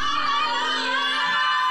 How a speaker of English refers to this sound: Are we online on the mainland? Are we connected? Mainland, can you shout hallelujah?